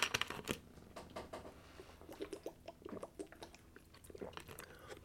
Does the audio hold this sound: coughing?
no